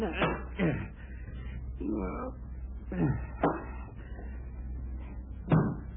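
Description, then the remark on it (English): A book knocked off a night table, heard as a few dull thumps and bumps spread across several seconds, over a steady low background hum. “Knocked the book off Dean's night table.”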